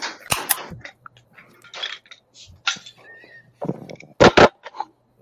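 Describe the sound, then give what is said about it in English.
Drink cans crack open one after another, each with a sharp metallic snap followed by a short fizzing hiss, with a final pair of loud pops near the end. “All right, y'all ready to crack these open?”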